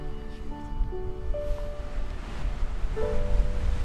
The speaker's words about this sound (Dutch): Nou, laten we dan nog maar een tijdje staren over het opspatten van het schuim van de golven die hier aankomen rollen.